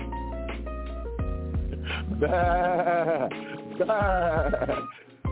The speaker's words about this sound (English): Sheep.